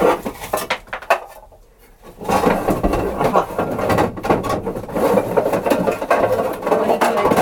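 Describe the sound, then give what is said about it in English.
Metal pots clank and clatter in irregular bursts as someone rummages through them to find a clean pot, with a short quieter pause early on before the knocking and scraping picks up again. “And in fact, I'm going to get a different pot because that one is not clean.”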